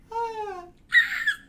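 A voice lets out a high-pitched, eerie scream in two bursts: first a sustained, slightly falling wail, then after a short pause a harsher, shrill screech, like an imitation of a baby's cry.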